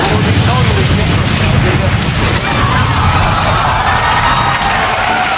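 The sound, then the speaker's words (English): A humpback whale's breaching splash: a loud, sustained roar of churning water with deep rumbling undertones for several seconds, with excited voices and cheering mixed in. “They were breaching. That was a breach.”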